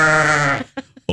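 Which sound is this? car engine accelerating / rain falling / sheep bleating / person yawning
sheep bleating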